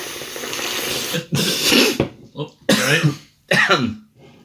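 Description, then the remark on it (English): A fit of harsh, spluttering coughs comes in several loud bursts with short gasping pauses between them, the sound of someone choking on cider after inhaling its bubbles and struggling to clear their throat. “I inhaled bubbles.”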